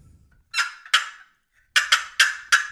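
A double-sided turkey call played on its thicker-walled left, cutting side makes sharp, raspy cutting notes, not a sweet hen sound: two quick bursts, a pause, then four more in a fast, choppy series, loud with no talking.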